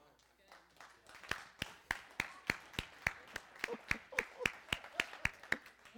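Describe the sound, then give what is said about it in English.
One person clapping for himself during a church sermon, in a steady, fairly quick rhythm, about fifteen sharp claps that begin softly and grow louder before holding an even pace to the end. “I'm going to clap for myself.”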